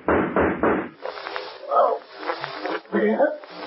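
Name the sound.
gunshots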